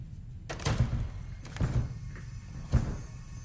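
A door being forced open: three heavy, booming thuds about a second apart, each with a rattling crack, close by and loud, with no voices.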